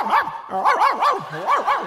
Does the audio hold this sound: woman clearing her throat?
no